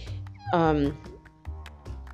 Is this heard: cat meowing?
yes